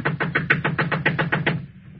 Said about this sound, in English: Knock again.